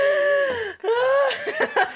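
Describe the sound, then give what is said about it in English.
A voice imitates panicked, hyperventilating breathing: two long, strained, wheezy gasps followed by a quick run of short, choppy breaths, fairly loud. “starts like breathing really hard.”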